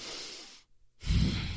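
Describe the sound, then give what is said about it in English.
A voice imitates a prolonged, chaste kiss: a soft breathy hiss, a brief silent pause, then a louder, lower smacking puff of air, with no talking. “Well, it's a prolonged like chaste. Kiss.”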